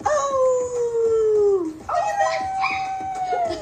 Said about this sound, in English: You hear a dog barking. Oh, do you? Yeah, like the whole time they're in that backyard, okay. You hear a dog barking. Okay, well then maybe that was Winnie.